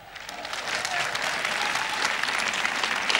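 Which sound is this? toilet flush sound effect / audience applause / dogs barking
audience applause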